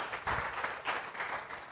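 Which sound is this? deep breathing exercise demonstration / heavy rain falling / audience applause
audience applause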